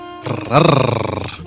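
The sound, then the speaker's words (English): A single loud, rumbling growl lasting about a second, with a rapid pulsing flutter through it, rising in intensity and then cutting off abruptly, heard on its own without talking. “Can we get like a quadruple little growl there?”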